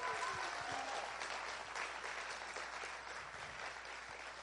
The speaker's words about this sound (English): Would you give a round of applause to everybody who's already invested?